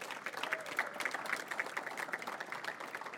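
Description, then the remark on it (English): A crowd claps steadily for a few seconds for a couple celebrating their 50th anniversary, a dense patter of many hands with a few sharper individual claps standing out, moderately loud throughout and no one talking. “So can y'all just clap for them?”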